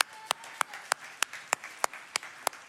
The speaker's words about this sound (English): Think about that. Five members of our church. That's about one for every 100 people that come here. I think that's worth clapping for.